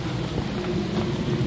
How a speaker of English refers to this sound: And there's a plane. Goddamn plane.